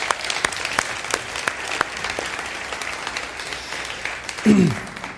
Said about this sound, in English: Hey, if you were a guest with us here today, if you don't normally attend Vine Life and you came to worship with us this morning, thank you so much for being here. Can we give a huge round of applause to anybody coming in?